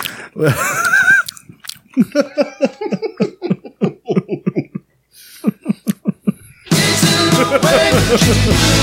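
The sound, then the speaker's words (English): Someone chews Sour Patch Kids candy as a snack while listening to a story, with wet, irregular mouth sounds mixed among voices and bits of laughter, then a loud, steady rustling noise fills the final couple of seconds. “We crumple up Sour Patch Kids. That's my popcorn.”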